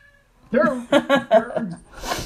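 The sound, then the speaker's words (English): An indoor cat meows several times in quick succession, fairly loud, with short chirpy cries, followed by a soft breathy rustle. “Also, she's an indoor cat, for crying out loud.”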